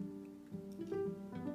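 A puppy dog barks and yips a few times in quick succession, its high, tonal little cries fairly soft, with no one talking.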